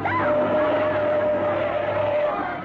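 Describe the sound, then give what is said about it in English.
A truck engine roars in a loud, steady drone with a sustained tonal whine, holding at constant strength throughout, as the truck speeds with its lights on along a narrow road crowded with refugees on foot, with faint crowd murmur in the background. “there's a car approaching.”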